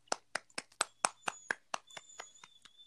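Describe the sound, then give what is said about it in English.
About a dozen sharp hand claps in a quick, steady rhythm, loud at first, then softer and slightly overlapping, like two people clapping together. No one speaks. “I know, I thought I could like out clap him, but I'm really looking at him like you really have to relax.”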